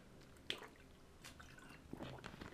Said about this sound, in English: It's me having some water, staying hydrated.